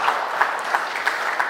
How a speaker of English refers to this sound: Two claps, that's amazing.